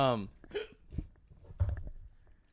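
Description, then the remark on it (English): A person imitates a hiccup with a short, sharp vocal gulp, followed by a few quieter breathy vocal sounds. “That was a fake hiccup.”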